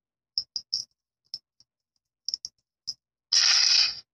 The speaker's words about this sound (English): Okay, rolling the dice.